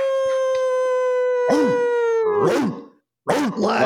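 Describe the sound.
A long, steady wolf howl drawn out over several seconds, then more howls overlap into a loud, wavering pack chorus that breaks off briefly and resumes.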